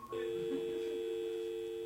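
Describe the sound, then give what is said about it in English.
A retro telephone ringtone used as a spaceship's door-opening noise on landing on the moon: a steady, buzzy electronic tone that switches on almost at once and holds at an even, moderate level for nearly two seconds, with no voices over it. “Computer, I hate those retro ringtones.”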